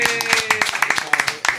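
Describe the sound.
Applause from a small group: sharp, steady claps in a quick, uneven rhythm, with a faint sustained voice-like tone underneath.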